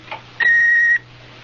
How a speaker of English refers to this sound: I'm not here at the moment, so please leave a message and phone number, and I'll get back to you as soon as I can. Don't forget to wait for the beep.